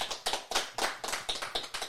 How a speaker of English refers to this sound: So without further ado, y'all give yourselves a hand clap because it's been an awesome year.